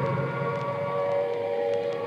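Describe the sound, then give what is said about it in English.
An air raid siren in Trafalgar Square, London, in 1940 sounds steadily throughout, a sustained, fairly loud tonal wail holding a near-constant pitch, with faint background noise beneath it and no voices. “The noise that you hear at the moment is the sound of the air raid siren.”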